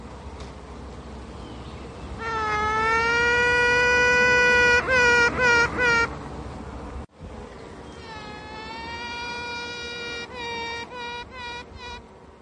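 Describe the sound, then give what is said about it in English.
A queen bee pipes: a long, reedy tone breaks into a quick run of short toots, and the pattern repeats a second time over a steady low hive buzz. “And the sounds of this queen bee singing.”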